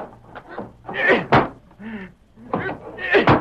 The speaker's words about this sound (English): I'll bust out the door.